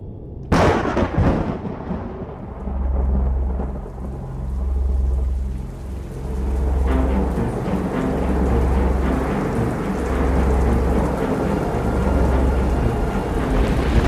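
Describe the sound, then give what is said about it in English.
Heavy rain pours steadily while a sharp thunderclap cracks near the start, followed by deep, rolling rumbles that swell and fade repeatedly underneath the downpour. No voices are present. “It was raining so hard, it was difficult to see 5 feet beyond the visor of his helmet.”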